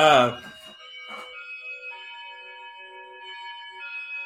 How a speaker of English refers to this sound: Let me go see who that is because someone should not be ringing my door.